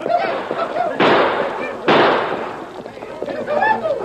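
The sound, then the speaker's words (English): Two loud gunshots fired at close range by outlaws charging a herd of longhorn cattle, about a second apart, each a sharp blast trailing off into a rumbling decay, while the men shout wildly in the background. “They charged the cattle, shouting wildly and firing their guns at close range.”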